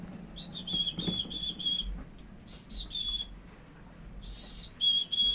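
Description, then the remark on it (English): A person whistles a high, thin imitation of a chickadee call, repeated in three short bursts of clipped notes, fairly soft against a faint background hiss with no talking. “I think chickadee is my best one. So let's see if I can do it.”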